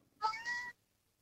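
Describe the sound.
A single drawn-out meow, about half a second long, rising then holding steady, voiced by a radio caller imitating a cat. It is clear, with silence around it.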